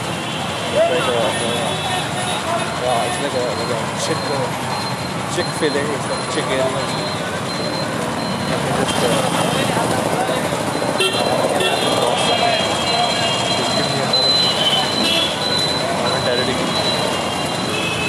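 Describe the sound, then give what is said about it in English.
The busy Munshi Pulia crossroad, in the middle of a big road, roars with continuous, loud traffic noise: engines rumbling, horns honking now and then, and a murmur of voices mixed into the dense, steady din. “Okay, so I am standing at Munshi Pulia.”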